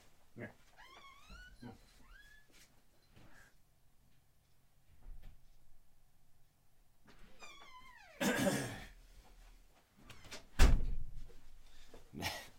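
A cat meows several times, a quick run of rising cries, then more meows, followed by an unlatched door from the garage bumping and thudding open as the cat pushes it with its paw and lets itself in.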